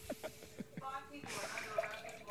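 Apple cider vinegar and water are poured into a container, starting with a few quick glugging drips that give way to a steady, splashing pour.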